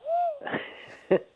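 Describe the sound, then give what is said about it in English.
A person imitates an owl with a single rising-and-falling hoot, followed by breathy, wheezy exhalations and a short vocal burst at the end, fairly quiet. “He does look like an owl, doesn't he?”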